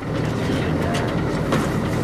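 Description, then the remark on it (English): A research boat engine idles near the shore of Anacapa Island, off the coast of Santa Barbara, with a steady, dense low rumble and a broad mechanical hiss, holding an even loudness throughout with slight fluctuations. “A research boat idles near the shore of Anacapa Island off the coast of Santa Barbara.”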